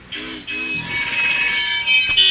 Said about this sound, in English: This is traffic.